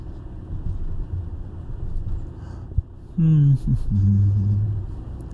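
Steady low road rumble and engine drone fill a car interior throughout, with a brief thump and a short stretch of singing into a microphone rising over the noise partway through.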